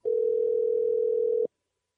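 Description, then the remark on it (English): A steady, unbroken telephone dial tone hums at moderate volume for about a second and a half before a call connects, then cuts off abruptly into silence. No voices are heard. “Let's go to the phones.”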